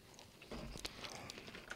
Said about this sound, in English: Hold on. I still have it in my mouth. I'm still chewing.